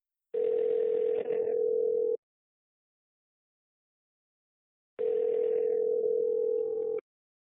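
A steady telephone ringback tone sounds twice, each burst about two seconds long, separated by a pause of nearly three seconds, clear with no voices.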